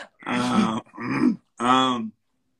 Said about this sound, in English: You got a cough? What's up? What's wrong with you?